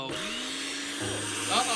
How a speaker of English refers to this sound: We're putting it in a blender.